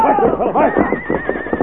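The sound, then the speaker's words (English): A weary horse whinnies loudly as it slows to a halt, a single shrill, quavering neigh that shakes and trails off over under two seconds. “As he hit the ground, his weary horse slowed to a halt.”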